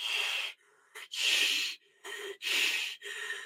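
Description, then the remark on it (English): A mouth breather with an overbite imitates a monster's heavy mouth-breathing panting, meant to scare: loud, raspy huffs in a steady rhythm, several long breaths alternating with shorter, softer intakes, with no talking. “…'s panting was kind of scary, but it wasn't enough for me.”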